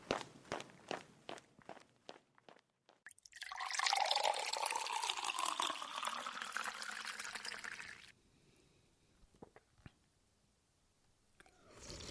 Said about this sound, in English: Quick little sippy of water, won't it?